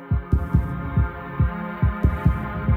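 A deep, thudding heartbeat pulses steadily in paired lub-dub beats, close and prominent over a low sustained musical hum, with no voices.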